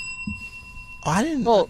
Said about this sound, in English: Do you want to ring the bell?